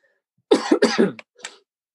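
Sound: coughing and throat clearing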